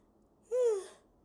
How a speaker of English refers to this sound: Lord, I'm yawning on the podcast.